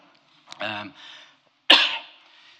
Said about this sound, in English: I'm sorry, I've had a cough for 2 months and my wife's going to smother me, she said.